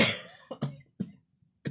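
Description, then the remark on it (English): A loud fit of coughing: one long harsh cough followed by several short, rough coughs in uneven succession, with brief pauses between them and no talking. “odd cough”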